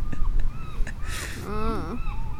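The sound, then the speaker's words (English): A bird calls out in a few harsh, honking caws, the last one longer and wavering, over a low rumbling background. “Oh, get the bird in there.”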